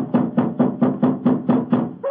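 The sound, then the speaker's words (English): Steady, rapid knocking on the wooden door of an elephant house, eight firm raps in an even rhythm, fairly loud, with no voices. “Why in thunder doesn't the keeper open the door? I imagine because his mind is preoccupied with music. Knock again, old fellow, will you?”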